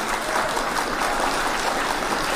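A crowd claps steadily, dense overlapping hand claps forming a continuous, fairly loud wash of applause that holds level for a couple of seconds with no voices.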